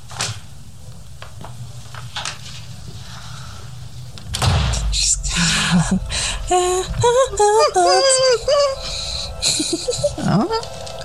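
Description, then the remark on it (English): A door opens or slides shut with a sudden loud sweep over a steady low rumble, followed by bursts of squeaky, warbling tones and clatter. “Door.”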